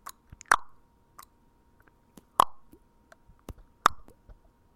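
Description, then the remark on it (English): Water drips in a cave in the desert: three clear, plopping drops land at uneven intervals, each with a short ringing tail, while fainter ticks and small splashes fill the quiet between them. “You're in the cave. Fuck off. And there's, you hear some water in the background.”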